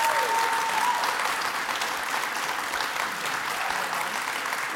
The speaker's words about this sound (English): Y'all give them another round of applause for being here.